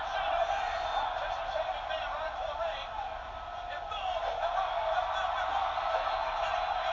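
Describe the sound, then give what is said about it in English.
A large arena crowd at a professional wrestling event roars and chants "Rocky" in unison, a dense, sustained wall of voices that stays loud and steady for the whole stretch with only slight swells. “The whole crowd, Rocky.”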